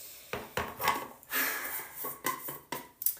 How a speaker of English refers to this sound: Okay, but why is it really satisfying to just like pat setting powder on your face? Is that just me? Find it incredibly satisfying. I'm like smacking my face with this powder thing.